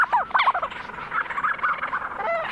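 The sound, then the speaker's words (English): A flock of Leach's storm petrels on Kent Island in the Bay of Fundy calling in a dense, overlapping chorus of chattering, purring, and rising-falling whistled notes, steady and moderately loud throughout, with no voices. “Lang Elliott recorded this flock of leeches, storm petrels on Kent Island in the Bay of Fundy.”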